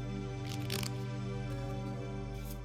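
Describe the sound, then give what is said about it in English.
Cards from a Radiant Crystal deck being shuffled: a few quick papery riffles and flutters, strongest in one burst early on and a short one at the end, over a steady low tonal drone. “Oh, the cards are shuffled about.”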